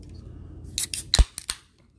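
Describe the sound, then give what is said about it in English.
A can of coffee cracks open: a quick series of sharp metallic clicks and snaps, the loudest with a dull thump, over a faint low rumble, with no one speaking. “Let's go ahead and crack this coffee.”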